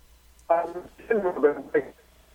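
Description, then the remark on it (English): A thin, band-limited telephone voice comes through in a few choppy, garbled bursts that cut in and out, then the line falls silent, like a call failing to connect properly, on a Newsmax hotline call with author Gordon Chang. “I think we got a little problem with the phone.”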